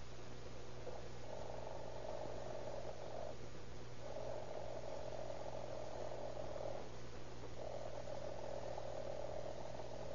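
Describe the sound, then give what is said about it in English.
An alarm clock bell rings in three long bursts of a few seconds each, a buzzy, rattling mid-pitched trill separated by short pauses, over a steady low hum. “I just want you to listen while I ring this alarm clock.”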